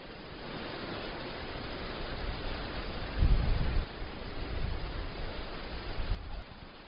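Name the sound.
wind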